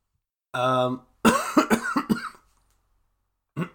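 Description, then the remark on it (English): A strained, voiced groan gives way to a rapid fit of four or five harsh, loud coughs, then a pause before one more short cough. “What was that about that cough?”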